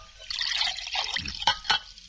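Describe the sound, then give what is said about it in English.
A short stream of water pours and splashes steadily into a glass for a couple of seconds, with two sharp clinks near the end. No voices. “Please, the water.”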